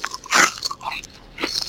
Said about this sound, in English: Our fans are really enjoying listening to me chew.